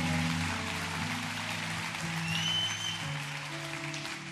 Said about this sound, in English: Come on, that's a good place to clap. That's a good place to cheer.